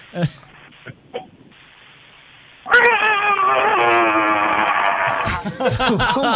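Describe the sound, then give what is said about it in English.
A voice imitates Wisconsin cheese being fried with a loud, sustained, wavering squeal lasting a couple of seconds, preceded by a few soft breathy sounds and ending in short yelping bursts. “what's your best impression of Wisconsin cheese being fried?”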